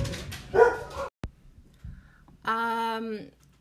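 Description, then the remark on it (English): A dog barks twice, loud, the second bark drawn out into a harsh, whining yelp, with a sharp click and quiet rustling in between. “Who's not going to miss my dogs barking?”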